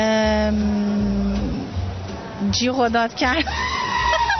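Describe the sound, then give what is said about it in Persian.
A person screams and shouts, loud and high-pitched: one long sustained cry, then a run of shaky, wavering yells that rise and fall in pitch. “جیغ و داد کرد.”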